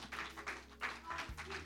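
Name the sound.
audience clapping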